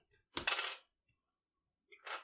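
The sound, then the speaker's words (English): Small hard dice, rolled during a tabletop role-playing game, clatter and skitter across a floor in two quick bursts, a longer rattling tumble followed by a shorter one after a pause, with no voices. “Landed on the floor.”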